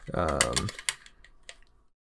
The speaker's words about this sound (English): My girlfriend got me a set of metal dice. Actually, they're kind of really sick.